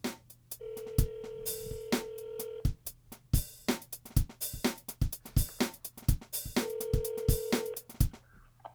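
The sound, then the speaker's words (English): A phone ringback tone while calling a brother purrs in two long steady bursts while a looping electronic beat with sharp clicks plays underneath, moderately loud, with no talking. “Let's get that ringtone music.”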